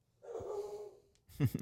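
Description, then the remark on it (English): A dog barks somewhere in the background, a drawn-out, whining bark followed by a couple of quick, sharper yaps, fairly faint with no one talking over it. “I don't know if they can hear him in the background or not, but he'll stop.”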